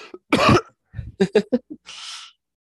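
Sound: cough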